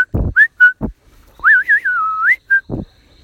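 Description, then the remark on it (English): A whistle answers from far away in short bright notes, then a longer warbling phrase that rises at the end, with a few dull knocks mixed between the notes; no one speaks. “From far away, a whistling noise came back.”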